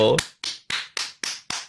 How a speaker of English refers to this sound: I'm clapping, not jerking off.